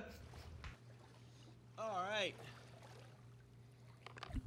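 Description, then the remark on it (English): Water sloshes and splashes steadily as people splash around and talk in a swimming pool, moderately loud, with a brief wavering vocal sound midway and a sharper splash right at the end. “I splish splashing around and talking about whatever”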